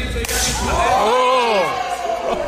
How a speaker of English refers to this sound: And slaps him mad hard. See, he slapped him right there.